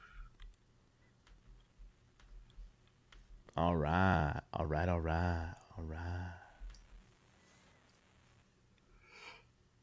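A long, loud, drawn-out vocal yawn with wavering pitch, broken into a few stretched pulses, over a quiet background with faint scattered clicks like mouse or keyboard taps.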